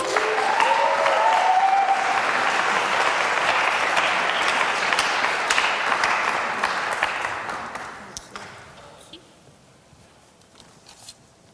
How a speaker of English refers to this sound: Why don't you give them a round of applause?